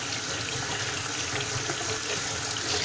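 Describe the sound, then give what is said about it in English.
Hot water streams steadily from a tap into a sink, a continuous hiss and splash that holds even for the few seconds, with no voices. “Are you one of those people too that actually like turns up the hot water and then is like, damn it?”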